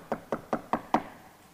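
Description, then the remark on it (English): Five evenly spaced knocks on a door, quick and steady, each a solid hollow rap, with nothing else audible around them. “And I knock on the door, and I always knock 7 times because it has a good ring to it.”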